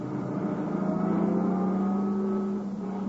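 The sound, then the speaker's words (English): A car engine hums steadily, its low drone rising slightly in pitch as the car pulls up a little in front of a cabin, then easing off near the end. No voices are heard. “Maybe his car's around on the other side. Let's pull up a little.”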